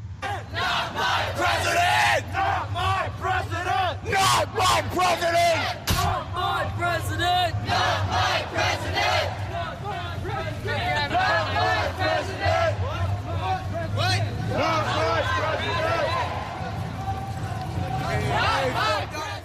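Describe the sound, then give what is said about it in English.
A large street protest crowd in downtown Portland, blocking the streets, shouts and chants nonstop, many voices blending into a loud, rhythmic roar with bursts of yelling over a steady low rumble. “They're protesting in downtown Portland, not my president.”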